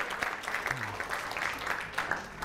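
A crowd applauds steadily, a dense wash of many hands clapping at once with crisp, irregular bursts throughout, fairly loud and sustained with no clear pauses.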